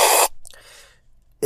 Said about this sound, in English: When you really slurp it, you do get just a real bitterness. Yeah, and that's, it makes sense. That's why you slurp, so you can taste what it really tastes like.